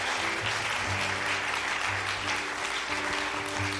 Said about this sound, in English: We give more round of applause.